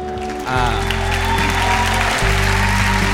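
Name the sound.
audience applause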